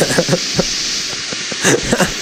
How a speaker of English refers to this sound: So this is his anti-alien water jet. Yeah, it makes sense. Okay. So it's like a projectile weapon with water.